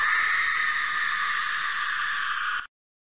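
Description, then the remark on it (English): A porg scream sound effect: one loud, shrill, sustained screech held steady for about two and a half seconds, then cut off abruptly into silence, with no talking. “Every good podcast has a porg scream, right?”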